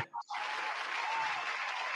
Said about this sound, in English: Round of applause to you for that, bro.